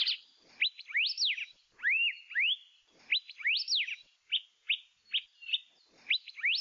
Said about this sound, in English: Alipayo seem more inquisitive and curious than other native forest birds, and will often follow hikers as they walk through their territories in the forest. Like many other Hawaiian birds, alipayo are named after the sound they make.